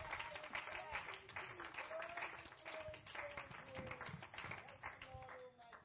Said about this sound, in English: One more time, clap unto the Lord. Thank you, Jesus.